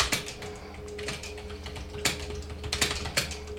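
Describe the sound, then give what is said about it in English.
Clacky computer keyboard typing, a quick irregular run of sharp key clicks, with a low steady hum underneath and no voices. “We need to get you like a silent dude. I need a new keyboard.”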